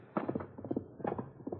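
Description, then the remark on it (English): A ridden chestnut horse gallops, its hooves beating out a quick, uneven rhythm of muffled thuds, fairly faint, with no voices over them. “That's that chestnut horse he rides.”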